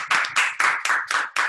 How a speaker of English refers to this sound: Let's give a clap to everybody who has done well.